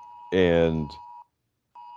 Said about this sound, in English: And I'm sorry, there's an emergency alert on my one of my phones here. Uh-oh. All right. But anyway, okay, because we have thunderstorms over here.